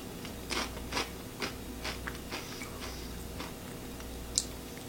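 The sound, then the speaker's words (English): Crunchy dill-flavored, spicy corn snack pieces being chewed, a series of sharp, irregular crackling bites repeating quickly and fading into softer munching, with one last brittle snap near the end. No talking. “Now I'm gonna try the dill pieces. I'm assuming these are the dill piece.”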